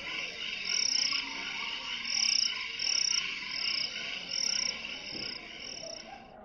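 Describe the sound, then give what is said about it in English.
A steady nighttime chorus of crickets chirping, with high trilling pulses rising and falling in a regular rhythm over a dense background of insect calls, and no voices. “But until then, I'm just going to let you listen to some crickets as we watch the campfire roll.”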